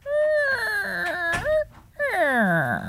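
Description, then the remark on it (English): A voice imitates a creaky door with two drawn-out, wavering whines. The first holds steady and then dips, and the second glides slowly downward in pitch. Both are fairly loud and come alone. “That's a creaky door.”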